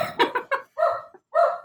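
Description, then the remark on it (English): Several sharp, excited dog barks in quick succession, loud, with brief pauses between the yelps and no one speaking, from dogs reacting to a sudden thunderstorm. “Sorry, my dogs are going nuts because we're suddenly having a thunderstorm here, but let's just keep going.”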